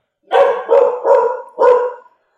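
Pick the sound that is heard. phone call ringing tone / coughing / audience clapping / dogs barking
dogs barking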